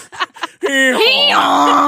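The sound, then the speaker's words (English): A woman imitates a mule's bray during an animal-sound guessing game: a few short breathy huffs, then a long, loud, strained vocal cry that wavers in pitch before settling into a lower drawn-out tone. “The last one she has is mule.”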